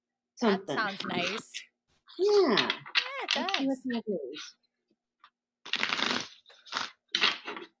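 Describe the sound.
A person talks briefly, then a tarot deck is shuffled in three dry, papery bursts of riffling, the first longest, heard alone after the voice stops.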